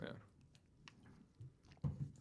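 Quiet mouth sounds of someone sipping a soft drink, a DC, a few small wet clicks and a brief slurp, with a soft gulp near the end and no talking.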